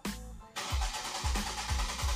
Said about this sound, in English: Is that a car?